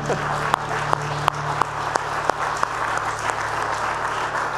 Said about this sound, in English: You can clap. Let's clap. That's good.